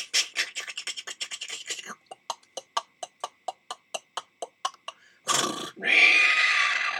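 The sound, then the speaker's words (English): Horse hooves clop along at a brisk pace, settling into a steady, even rhythm as the horse pulls a wagon to the forest, then a sharp snort and a loud, drawn-out whinny. “And now I'm going with my horse and wagon to the forest.”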